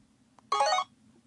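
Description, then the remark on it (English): A single short electronic ring of a studio phone chirps out loud, lasting a fraction of a second over a faint low background hum, with no one speaking. “No, I was on the phones because it blew up and the intern's a little slow on them.”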